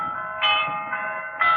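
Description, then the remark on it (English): Tower bells rung by the tower's original bell ringer, ringing in a steady sequence, with three clear strikes whose bright, metallic tones overlap and hum on between blows. There are no voices. “Who could be ringing those bells?”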